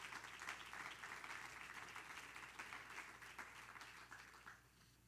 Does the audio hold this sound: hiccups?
no